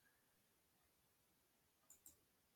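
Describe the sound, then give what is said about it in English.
Two quick, soft mouse clicks land close together near the end, sharp and dry against a faint, steady background hiss, with no talking, made while clicking to get to another part of a story. “I'm clicking because I'm trying to get to the other part of the story and the rest of the story, so to speak.”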